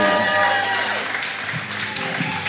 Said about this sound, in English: Amen, amen. Stop clapping, stop clapping.